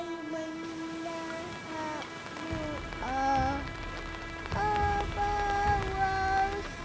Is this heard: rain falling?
yes